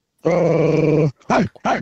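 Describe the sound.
A man from Canberra imitates a dog, starting with a long, rumbling growl and following it with two short, sharp barking snarls, loud.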